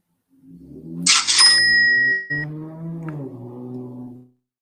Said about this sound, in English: All these loud ass cars, man. I'm sorry you had to hear that